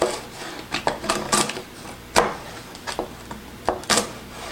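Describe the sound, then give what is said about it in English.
A carrot being sliced with a wheel cutter: an irregular series of crisp crunching snaps, about ten sharp cuts over a few seconds with faint rustling between them. “All right, so let's slice the carrot using the wheel.”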